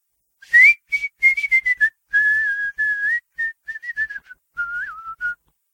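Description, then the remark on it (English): Someone whistles a bouncy calliope-style tune: a quick run of short, clipped notes, then longer held and gently sliding tones. No one speaks. “… whistled a calliope tune.”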